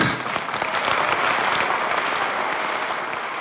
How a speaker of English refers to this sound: A joint session of Congress. The chamber is full of men in dark suits. They all rise to applaud President Lyndon Baines Johnson as he makes his way through the crowd.